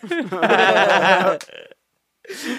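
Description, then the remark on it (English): A long, loud, croaky belch-like vocal sound rumbles for over a second, probably a voice imitating a burp, followed by a brief quieter sound and then a new voice starting. “she said, "Burp." Like, it's all the SpongeBob effects”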